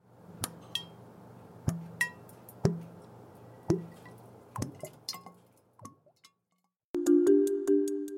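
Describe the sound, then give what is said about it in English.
Thick, gloopy liquid pours over a low steady rumble, landing in irregular heavy plops and clinks, then a short pause before a louder burst of thick glugging at the end. “That was a thick, gloopy liquid.”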